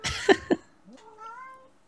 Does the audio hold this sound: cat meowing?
yes